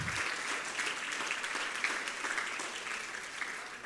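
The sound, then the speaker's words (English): A church audience in Zanesville, Ohio, gives a hand clap of praise to the Lord in sustained, dense applause, many hands blending into a steady wash of sound without pause. “Give a hand clap of praise unto the Lord.”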